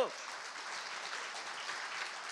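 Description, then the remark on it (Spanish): An audience breaks into steady applause, many hands clapping in a dense, even wash of sound that holds at a constant level throughout. “¡A ver ese aplauso!”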